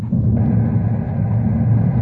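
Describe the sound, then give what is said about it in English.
A newly struck oil well in California gushing a shower of black oil: a loud, steady roar of rushing fluid with deep rumbling weight, continuous and unbroken for the whole two seconds, with no voices over it. “You mean that shower of black water? Black water? Mrs. Hancock, that's oil. Oil, they've struck it.”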